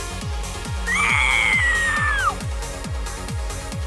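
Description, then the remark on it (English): A person lets out one shrill, drawn-out pterodactyl-style screech, holding it about a second and a half before it drops off, over a steady thumping beat of background music. “Some people in chat want me to do a pterodactyl screech like I did last night.”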